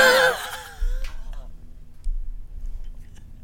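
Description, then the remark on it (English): A short slurping sip of IPA beer followed by a soft exhale, then quiet low rumbles from handling and background noise. “But just take a sip that is that much.”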